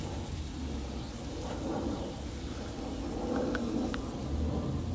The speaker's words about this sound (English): I'll probably hear it. It's like a lovely aesthetic, at least for me, to hear that sizzling grill sound. Flip over some food and put something on the grill.